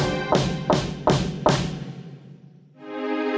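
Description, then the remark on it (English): Four loud, heavy knocks on a door in a steady rhythm, someone knocking as hard as they can, followed by a brief pause and a creaking sound as the knocking fades. “Kate knocked on the door as hard as she could.”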